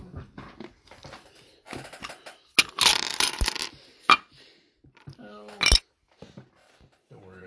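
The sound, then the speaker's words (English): Dice clatter across a hard tabletop in a few short, rattling bursts, moderately loud, as players roll for initiative, with people chatting quietly around the rolls. “Now I believe we roll for initiative.”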